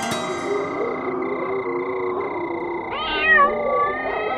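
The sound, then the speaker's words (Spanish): A kitten meows in a long, drawn-out whine at a makeshift camp, then lets out a sharper, higher-pitched cry near the end, fairly loud with no talking. “El gatito ha detectado actividad inusual que circunda nuestro improvisado campamento.”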